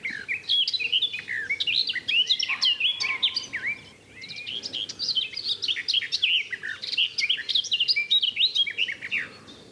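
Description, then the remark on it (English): A warbler, either a garden warbler or a blackcap, sings a rich, fast, fluid warbling song of tumbling notes, continuous with only a brief pause, over a faint background hum. “It's a bird that I always like to see before I make a definite ID, because they do sound similar to a black cap.”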